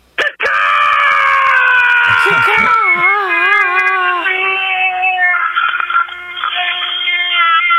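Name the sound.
person yelling loudly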